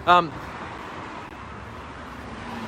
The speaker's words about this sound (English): And so they've, whoa, that car was nowhere near me.